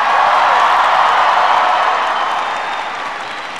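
A crowd claps together in a dense, steady wash of applause, loud throughout and easing off slightly toward the end, with no voices over it.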